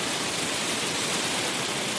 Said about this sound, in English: Well, like I said, 4 seasons in a day. Just a wee hailstorm. Yeah, they tend not to last long, but they are frequent.